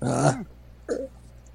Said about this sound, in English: Hello, impatient dog. You must wait. Yeah, Benji, stop it.